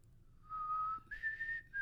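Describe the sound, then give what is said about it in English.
A person whistles a short tune: a long steady note, then a jump to a higher held note with a brief break before it ends. No talking. “He's like what is that? Whistle from Mockingjay or whatever?”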